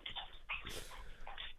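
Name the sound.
dog drinking water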